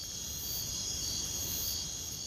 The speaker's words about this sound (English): Instead, crickets.